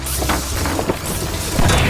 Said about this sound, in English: Whoa! Huh! Whoa! The lumber! Uh-oh. It crashed into one of your spider things.